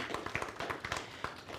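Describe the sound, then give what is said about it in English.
A church audience applauding together, a dense, uneven patter of hand claps at steady volume, heard briefly and without any voices over it. “Give her a big round of applause.”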